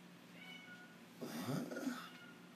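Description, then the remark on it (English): A male cat gives a drawn-out meow with a wavering, rising-and-falling pitch, moderately loud, starting about a second in and lasting over half a second, against a faint room hum. “Hear the cat meowing.”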